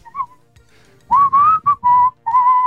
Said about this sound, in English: Whatever that one is, I bopped that one a lot for some reason. Good whistler. Good range.